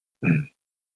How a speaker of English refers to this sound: I was just clearing my throat, man.